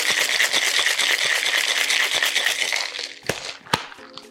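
A cocktail shaker with a Boston glass, full of ice, marmalade and Mr. Consistent Cosmo mix, rattles hard and fast for about three seconds, loud, then stops with a few sharp knocks and clinks.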